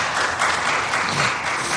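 An audience claps steadily, a dense, even wash of many hands with no voices breaking through, holding a constant moderate loudness throughout.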